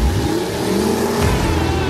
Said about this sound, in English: If you enjoy the roar of an engine, the smell of burning rubber, or just metal parts meshing against each other to reach insane amount of speeds, then we got you covered.